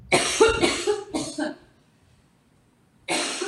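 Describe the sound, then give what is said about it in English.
A burst of four harsh allergic coughs in quick succession, loud and raspy, then a pause of silence before another cough begins at the end. “I do not have COVID. I just have allergies.”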